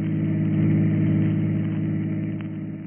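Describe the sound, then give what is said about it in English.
A chauffeur-driven car's engine hums steadily, a low rumbling drone with harmonic layers that holds even throughout, as if heard from inside the moving car. No voices are present. “We find him now in his chauffeur-driven car, and with him is the lovely young girl, 15 years his junior.”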